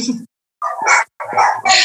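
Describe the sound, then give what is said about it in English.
A few loud dog barks from a household of about ten dogs burst out in quick succession, separated by short gaps, with no talking alongside them. “Sorry, I told you when I said I had a lot of dogs, I mean like 10.”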